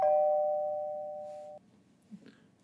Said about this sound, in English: Next, we go in and we see a young man sitting at home, and the doorbell rings.